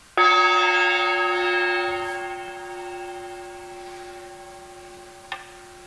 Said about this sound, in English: And so let's sound the chime and move into our silence.